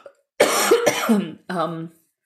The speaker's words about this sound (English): yeah, at the moment, my cough is, you know, stirring our baby a little bit because it's very loud, and he's actually used to incredibly loud sounds.